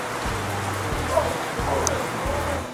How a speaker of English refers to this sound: And it is raining like crazy and thundering and lightning here on opening day of Bluegrass and Barbecue. Check that out.